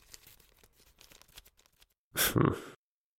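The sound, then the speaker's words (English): Soft, scattered rustling and shuffling of sheets of paper being handled by a person for about two seconds, then a brief pause and a sudden loud flap of paper lasting about half a second. “There's something about a person who's flapping actual bits of paper about that just looks busier than cleaning out your inbox.”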